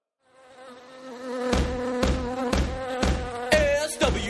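A loud, droning buzz of swarming bees fades in and holds steady, joined after a moment by sharp rhythmic thumps landing about twice a second.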